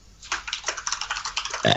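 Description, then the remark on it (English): A man's short, rough burp attempt: a string of raspy, crackling croaks that ends in a slightly louder, deeper gulp. It sounds weak and sputtering, with no talking over it. “It gets funnier every time he burps.”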